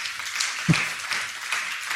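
Audience applause, a steady dense patter of many hands clapping at moderate volume, with one sharper, louder clap standing out briefly partway through.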